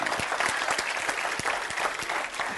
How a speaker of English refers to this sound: Jesus is coming. I'm going to wait while you all clap your hands there.